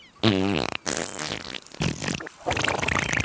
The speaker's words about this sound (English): I didn't think either seagulls or angels could get PTSD, but just the sound of your taxi makes my stomach churn.